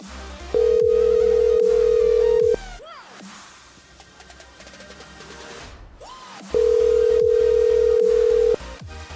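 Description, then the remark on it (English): An outgoing phone call rings on the line: two long, steady ringback tones, each about two seconds, separated by a pause of several seconds, with low background noise underneath and nobody answering. “Yeah, he's probably turned his phone off by now.”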